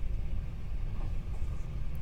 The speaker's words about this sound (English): There's just something about the sound of a train that's so relaxing, isn't there? I mean, just listen to that. It's fucking lovely.